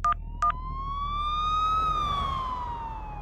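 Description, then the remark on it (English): An ambulance siren wails in one slow rising and falling sweep, preceded by two short electronic chirps, over a low engine rumble. Loud, with no voices. “In a sort of shell shock, I watched my wife pick up her phone and dial an ambulance.”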